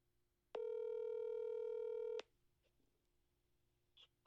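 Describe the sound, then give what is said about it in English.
A single loud, steady electronic phone tone, like a keypad beep held for nearly two seconds, as a phone call to someone's mother is dialed, cuts off abruptly, leaving quiet background noise with a few faint small sounds and no talking. “Can I call my mom? Okay. Oh my god, Carol. We have to get Carol on the phone.”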